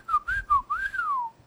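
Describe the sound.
Someone whistles a bird-like call: a few short sliding notes that rise and dip, then a longer note that swells and glides slowly downward, clear and fairly loud with no talking.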